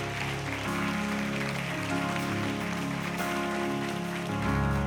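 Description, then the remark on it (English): A crowd claps steadily at a church baptism service, a dense crackling patter that holds at an even level for about five seconds over sustained keyboard chords, with no voices. “Come on, clap it up, clap it up.”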